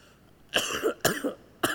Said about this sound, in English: I think I'm going to cough until I die. Oh my God.